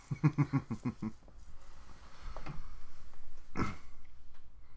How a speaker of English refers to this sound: Have we ever done the Stat of the Week jingle after the show?